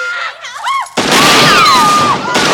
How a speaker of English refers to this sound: obviously you hear shooting. And they're all shooting.